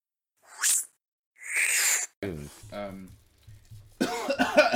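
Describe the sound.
Two sharp, breathy coughs burst out, one short and one longer, followed by a person talking and then louder voiced speech.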